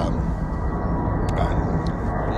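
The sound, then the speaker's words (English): A steady, heavy low roar of a loud airplane passing overhead, heard while recording outdoors, fills the whole stretch, a dense rumble with little change in loudness and no voices over it. “but that's a loud plane.”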